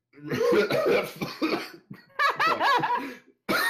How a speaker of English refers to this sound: All right. Choking noises.